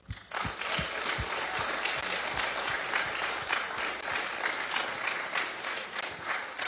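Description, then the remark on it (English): A crowd breaks into sustained applause for the Lighthouse leaders who lead the small groups, dense overlapping clapping that swells quickly and holds steady at a fairly loud level throughout, with no voices standing out. “But we just wanted to take a minute and give you guys a round of applause for all that you do for everything for these high school and college graduates.”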